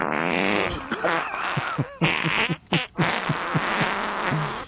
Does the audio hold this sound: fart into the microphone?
yes